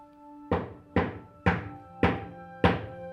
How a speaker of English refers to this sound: and then they began working through the alphabet in the way early spiritualists, including the Fox family, had. A is one knock, B is two, etc.